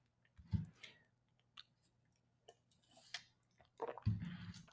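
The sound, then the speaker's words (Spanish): Someone drinks water: quiet gulps and wet mouth sounds, with two fuller swallowing bursts near the start and end and small clicks and sips in between. No one speaks. “Un brexito para tomar agua.”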